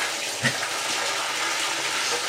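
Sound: bathtub tap running water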